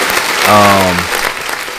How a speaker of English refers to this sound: The applause was still going on.